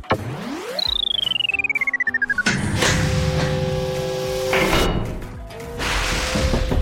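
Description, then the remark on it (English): A rapid pulsing electronic tone sweeps downward as a secret code is entered on a keypad, then a loud, heavy mechanical rumble and hiss roll on for several seconds as the gigantic door of Florp HQ slides open, with a shorter whoosh at the end. “We just need to enter the secret code.”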